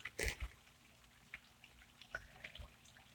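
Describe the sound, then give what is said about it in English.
Very light, soft rain pattering on the leaves of a grape arbor: soft, irregular taps and drips, with a brief louder cluster at the start and scattered single drops after, all faint with no talking. “But isn't that pretty with the sound of the rain falling on the grape leaves?”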